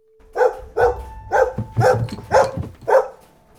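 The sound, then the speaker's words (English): A huge dog named Trigger, the size of a pony, barks ferociously, six loud barks in a steady rhythm about half a second apart, with no other sounds around them. “he began barking ferociously.”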